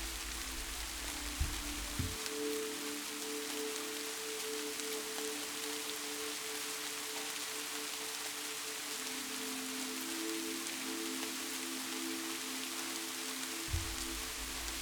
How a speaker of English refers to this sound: The sound is soothing to you. You feel your body begin to relax further as you listen to the gentle hum of the rain.